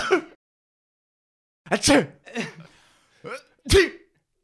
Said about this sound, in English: My dad, this is how he used to sneeze. He used to go, achoo! Yeah, yeah. I've inherited my dad's sneeze.